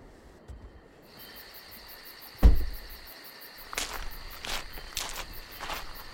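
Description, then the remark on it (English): A single solid thud like a car door shutting as a police unit leaves its vehicle on arriving at the scene of a reported car accident, followed by several crunching footsteps walking away, set against a steady chirr of crickets or insects outdoors at night. “137, leaving vehicle.”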